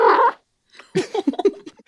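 A gray domestic cat named Pigeon makes a short, loud cooing trill, then after a brief pause lets out a quick series of softer, burbling coos and chirps.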